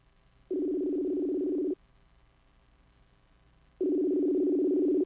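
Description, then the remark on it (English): Two steady telephone ringing tones, each lasting just over a second, separated by a pause of a few seconds, as a call to a cell phone rings through from a phone connected by Bluetooth to the board, with no one speaking. “I'm going to call your cell phone, darn it.”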